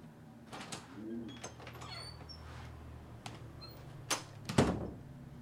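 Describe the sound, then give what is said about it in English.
A cabin door opens with a few scraping knocks and a solid clunk near the end, over a low steady hum and faint background sounds. “You may now stand up and leave your cabin.”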